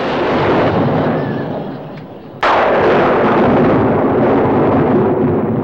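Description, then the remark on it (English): Thunder from an approaching tropical storm: a heavy, rumbling roll fills the air, fades briefly, then a sudden loud crack bursts in and rumbles on, powerful, with no voices. “Gathering clouds are clear indication that a tropical storm of considerable fury may be expected shortly.”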